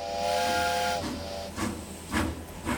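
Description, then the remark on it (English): A steam train whistle sounds steadily for about a second, then gives way to slow, hissing chuffs of steam as the locomotive pulls away from a station, each puff spaced about half a second apart. “After the final man arrived, the conductor gave his formal "all aboard," and the train chugged away from the station.”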